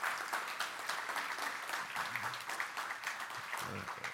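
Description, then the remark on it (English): A room full of people claps steadily in a round of applause for a collected offering, a dense crackle of many hands that holds at an even level for several seconds, with a faint murmur of voices underneath. “Give God a round of applause for that.”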